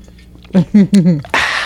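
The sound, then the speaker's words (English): Three short voiced syllables, like a voice imitating glugging, are followed by a steady rushing hiss of water being poured into a glass, fairly loud. “Let me get some more water here.”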